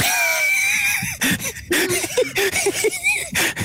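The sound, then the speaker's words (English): A loud horse whinny from a horse that has fallen over, a high strained cry sliding downward, then a run of shorter, lower choppy neighs and snorts that stutter on for a few seconds. “He looks over at the horse that's fallen over,”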